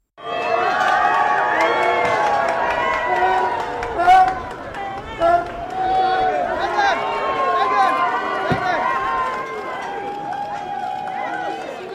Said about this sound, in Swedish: Och det är ju spännande det här med liksom Harry och Meghan och när de gör entré till olika saker. Det är många som jublar, men det är också några som buar. Och vi lyssnar på hur det lät då när de gjorde entré till Invictus Games.